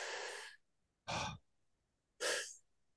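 Three airy breaths, each about half a second long, separated by short silent pauses, in a demonstration of slow, smooth breathing. The exhales are soft but clearly audible, with no talking in between.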